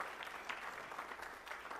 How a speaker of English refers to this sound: Let's give her a hand clap being back in church. God bless you.